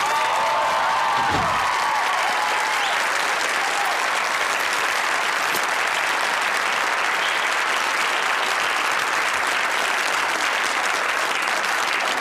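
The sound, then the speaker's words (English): Steady, sustained audience applause for the entrance of the Grandma character, played by Rue McClanahan, fills the whole stretch, a dense wash of clapping with a few faint whoops at the start and no speech over it. “And I think we should just play her entrance, which gets a very nice and well-deserved applause.”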